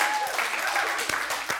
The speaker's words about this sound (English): Are we a clapping church now? I have been wanting this.